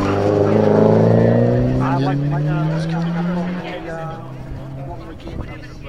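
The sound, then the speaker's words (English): A Porsche 924 Turbo engine revs loudly, its droning note climbing steadily in pitch for a few seconds before easing off, with people talking over it. “924 turbo.”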